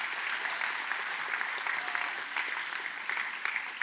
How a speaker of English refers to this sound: You guys, you've done an awesome job. Let's give these guys a massive round of applause.